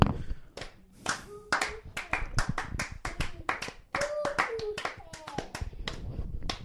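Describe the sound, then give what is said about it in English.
Light, polite golf clap: a few people clapping slowly, steadily and somewhat unevenly for several seconds, moderately loud, with faint voices murmuring underneath. “just a golf clap. A slow applause.”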